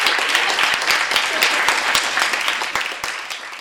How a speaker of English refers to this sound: Thank you so much. I don't know why I'm clapping.